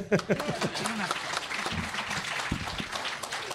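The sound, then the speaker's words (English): An audience breaks into steady applause, a dense crackle of many hands clapping at even loudness throughout, with a brief voice heard at the very start. “You want to clap?”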